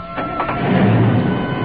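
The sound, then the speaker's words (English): A car engine turns over and catches, then settles into a steady, rumbling idle, fairly loud, as the car gets ready to leave with two people inside. No one speaks. “There's his car starting up.”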